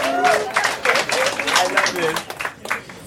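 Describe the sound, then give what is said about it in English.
An audience in Brooklyn claps and applauds steadily for Jim Tews and Will Miles for about three seconds, a dense patter of hands with scattered cheers and voices mixed in, fairly loud throughout. “Jim Tews, clap your hands for Jim.”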